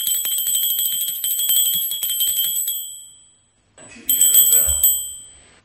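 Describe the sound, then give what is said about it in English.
A small hand bell, rung in a house to get someone's attention, rings rapidly and continuously for a few seconds, falls silent, then rings again in a shorter burst that fades out. Fairly loud. “Because you were the one who said, oh, you should get the little bell to get my attention.”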